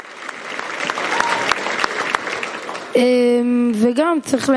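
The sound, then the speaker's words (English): A crowd applauds steadily for about three seconds, a dense patter of many hands clapping, then a loud, sustained voice with a rising and falling pitch cuts in as the clapping fades. “Give him an applaud.”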